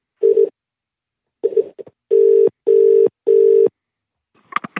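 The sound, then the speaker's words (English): A phone call is redialed after a bad connection: a few short electronic tones, then three steady, evenly spaced ring tones, clear, ending in a brief click. “Yeah, I'll just try and call again. I'll hang up.”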